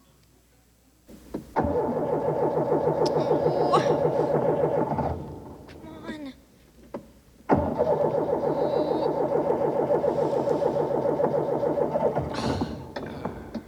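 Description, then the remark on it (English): A car engine cranks twice in long, rhythmic churning bursts, each several seconds, without catching. A short spoken remark comes in the pause between attempts. “Hi, it looks like you're having a little trouble with the car.”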